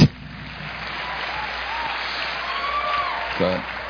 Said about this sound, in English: Amen. Go ahead and clap. Go ahead and do it.